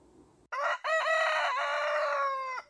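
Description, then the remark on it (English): A rooster crows once, a loud cock-a-doodle-doo with a short opening note followed by a long, strained, harmonic-rich call that holds steady before cutting off. “A typical morning will start with a rooster crowing, and it could be heard across the neighborhood.”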